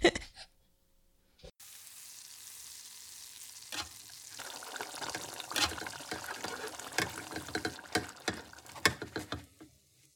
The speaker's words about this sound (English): So there was sizzle, but there's not going to be sizzle when you make this recipe.